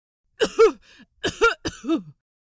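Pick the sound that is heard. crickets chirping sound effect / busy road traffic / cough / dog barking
cough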